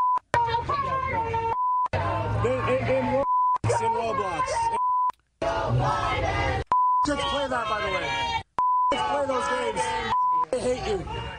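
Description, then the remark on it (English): A loud crowd of Arab American voters in Michigan chants an F-word phrase against Joe Biden in repeated bursts, the swear word in each phrase cut off by a sharp, steady censor bleep, the pattern cycling several times in a regular rhythm. “They're chanting, and these are the Arab American voters.”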